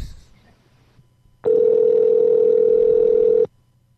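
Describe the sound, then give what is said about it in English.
A steady telephone dial tone, before calling a phone number found posted on a wall, sounds for about two seconds, loud and unbroken, then cuts off abruptly, with only faint low background noise before and after. “So let's call teenage girls.”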